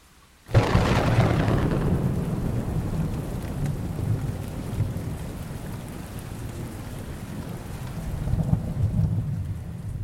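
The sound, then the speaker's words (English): A heavy thunderstorm at night breaks in with a sudden loud crack of thunder, then a long low rumble over rain pouring down in torrents, with another swell of rolling thunder near the end. “describe the night as one of impenetrable darkness with rain pouring down in torrents.”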